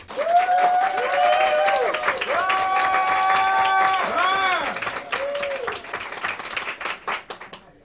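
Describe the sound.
An audience at a debate bursts into loud, sustained applause to vote for the winner arguing for competitive plan canceling, dense clapping mixed with whoops and cheering voices, then the clapping thins into scattered claps before trailing off.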